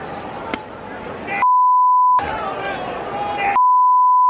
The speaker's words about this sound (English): I think they beep it here.